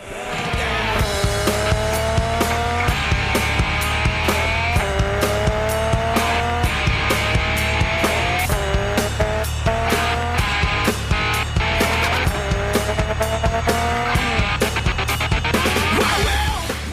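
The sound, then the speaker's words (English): A car engine rev sound effect sweeps up repeatedly, scratched by a DJ so it stops and restarts, set over the loud, steady pounding beat of a nu metal song, with no talking. “And then at one point, the DJ scratches the rev sound effect to stop and start the revving sound effect.”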